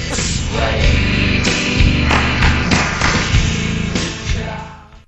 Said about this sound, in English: Here it is in slow-mo for you. Ready to count over Oh, there? Okay, okay. One, two, three, four. It's right there. What? How am I skipping over a clap?